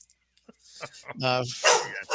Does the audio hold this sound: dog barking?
yes